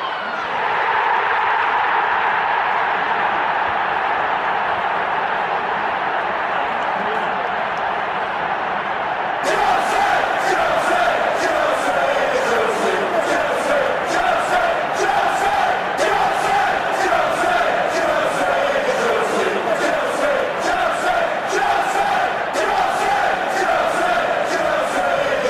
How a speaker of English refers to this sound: Give John a great send-off and a round of applause. Thanks, people.